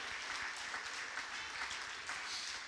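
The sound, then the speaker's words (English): A crowd claps hands steadily, a dense, continuous patter of many overlapping claps at a fairly even loudness, with no voices standing out. “Oh, clap your hands, all you people, and shout with a voice of triumph.”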